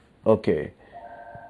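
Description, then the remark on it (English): A short burst of voice gives way to a steady electronic telephone tone from an incoming call, a sustained two-pitch beep holding for about a second at moderate volume. “I get a call.”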